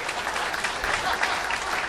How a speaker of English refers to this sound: And they all kind of stopped clapping, but what I did was perfect.